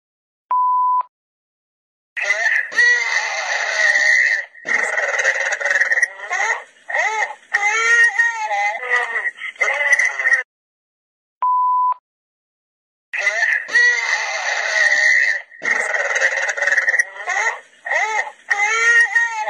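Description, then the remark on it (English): A voicemail left by a man who called his wife before he went missing: a short electronic beep, then several seconds of loud, harsh metallic growling with a buzzing, distorted phone-line quality; after a pause, another beep and the same grinding growl returns. “So I don't know if you could hear that sort of metallic growling that was there.”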